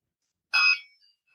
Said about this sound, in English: It was too mature for her, but now at 14 months, she can press buttons. Doorbell. Here's a doorbell.